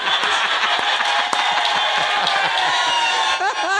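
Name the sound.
crowd cheering and clapping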